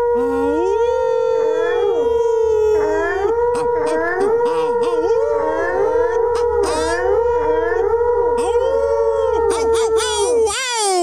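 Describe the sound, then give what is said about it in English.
A person imitates a wolf howl with a long, loud, continuous wail that rises and swoops repeatedly over about eleven seconds, with a second howling voice seemingly layered beneath it. “On all levels except physical, I'm Wolf too.”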